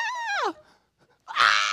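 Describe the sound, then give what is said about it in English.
A person imitates a horse shrieking ecstatically, with a loud, falling whinny-like wail, a brief pause, then a harsh, high, ecstatic shriek. No words are spoken. “So it's like this horse goes,”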